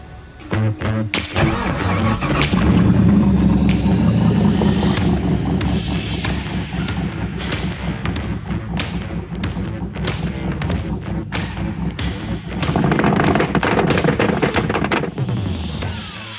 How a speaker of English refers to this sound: That was Tanner and his Volvo 164. Yeah, that was a Volvo, if you can believe that. Did you hear the chop on that thing?